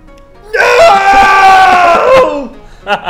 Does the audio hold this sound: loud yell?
yes